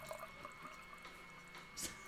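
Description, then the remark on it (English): A drink that is supposed to fizz pours steadily into a glass for about two seconds without really fizzing, a continuous trickling splash with a brief louder gush near the end, fairly quiet, no voices. “I'll be able to pour it out now. So I've got my glass.”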